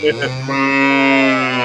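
A cow lets out one long, loud, drawn-out moo, starting with a couple of short grunting bursts before settling into a steady, low, resonant bellow.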